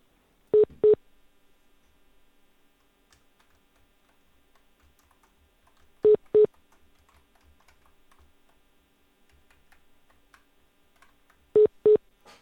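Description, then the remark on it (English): Short electronic telephone keypad tones sound in quick pairs as someone dials to teleconference a guest in, three times at steady intervals of about five seconds, loud and clear over a faint background of soft clicks, with no talking. “Can I just teleconference him in from here?”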